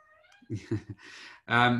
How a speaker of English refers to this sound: I just got my cat meowing at me in the background there. She wants to play.